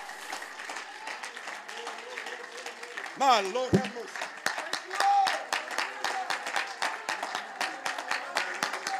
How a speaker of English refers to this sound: Oh, let's clap our hands and praise that one God right now.